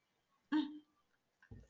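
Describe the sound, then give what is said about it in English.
A single brief sip and swallow of a drink, a soft wet gulp followed by quiet, then another faint mouth sound near the end. No one speaks. “Somebody don't want me to say that, but let me take a sip.”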